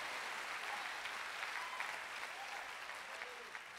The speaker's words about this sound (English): Am I talking to somebody who still loves Jesus? If you love Jesus, clap your hands.